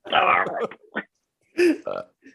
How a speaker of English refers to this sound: The burping.